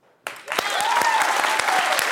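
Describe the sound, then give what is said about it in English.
A studio audience bursts into clapping after a brief quiet moment, answering a host's call to clap, building into dense, steady applause from many hands that stays loud to the end, with faint voices mixed in. “Who's for cleaning up the next day? Clap of hands. Who says that night?”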